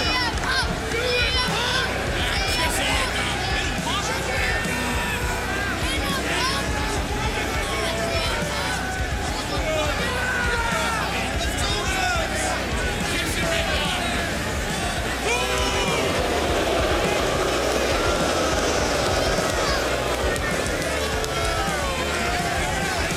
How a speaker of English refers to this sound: They're booing him, but I can't believe I'm saying I feel for him, man.